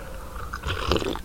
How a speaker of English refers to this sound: slurping her coffee a little bit ago.